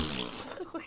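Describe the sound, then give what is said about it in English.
A short, buzzy fart noise made with the mouth, a voice blowing a raspy, sputtering blast that lasts under a second and ends in a couple of quick bursts. “Like propelled himself backward with a fart.”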